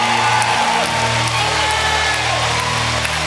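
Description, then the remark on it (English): An audience claps their hands in a steady, rhythmic beat over a loud, sustained bed of music and crowd noise, with no clear speech. “All you gotta do is clap your hand. Don't wait till the battle is over. Clap right now.”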